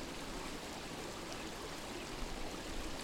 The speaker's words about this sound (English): Just as clear as this mountain water.